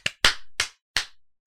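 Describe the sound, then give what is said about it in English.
Five sharp hand claps, spaced unevenly with no steady beat, each ending in a short ringing decay. No one speaks. “At some point, the kids tune claps. You out. So if I clap, you know, well, no, they're I think like, they're, wait, why did she?”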